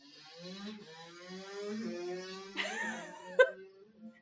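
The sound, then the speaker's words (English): A motorbike outside drones with a buzzy, harmonic whine that climbs in pitch and swells, then a sudden sharp spike of noise before the sound trails off. “There's a motorbike outside.”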